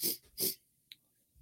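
Two quick, breathy sniffs in a row at a burger with a thin bun, loud and hissy, followed by a faint short click and near silence. No one speaks.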